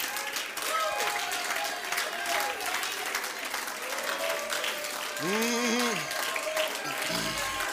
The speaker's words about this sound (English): Oh, let's clap our hands to the Lord.